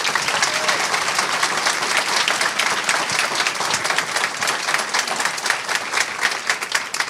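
A crowd at Quail Ridge bookstore in Raleigh applauds to welcome three guests, many hands clapping in a dense, even patter that holds at a fairly loud level for several seconds without letting up.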